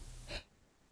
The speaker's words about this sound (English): I'm going to sneeze.